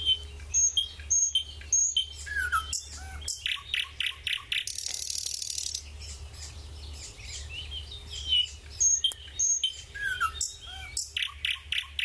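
A nightingale sings on its own in a rich, varied stream of phrases: rapid trills, liquid whistles, a buzzing rattle and sharp repeated notes, clear over a low background hum.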